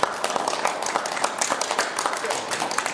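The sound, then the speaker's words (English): A round of applause from the panel and everybody present, with many hands clapping at once in a dense, steady, fairly loud patter and no single claps standing out. “I think if we could get a round of applause from everybody on the panel and for everybody.”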